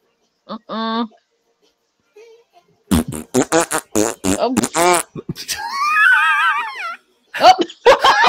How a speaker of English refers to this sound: But this, when I heard the fart part, I was like, okay, that is too much. First of all, them farts are not even dry. Those things are wet, alright?